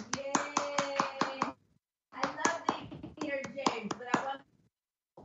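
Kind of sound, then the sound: crowd, clapping hands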